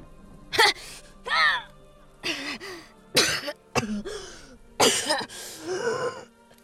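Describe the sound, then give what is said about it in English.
A close, moderately loud run of dry coughs, about half a dozen harsh bursts in uneven succession, some rasping like throat clearing, with brief pauses between them. “His back slammed into the wall, forcing out a dry cough as he fell headfirst toward the floor.”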